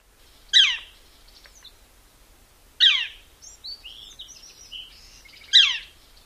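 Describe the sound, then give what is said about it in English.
A Northern Flicker woodpecker gives three loud, sharp, downslurred calls spaced a couple of seconds apart, clear, with softer twittering bird notes in the gaps between them. “This call is really loud and is very distinctive.”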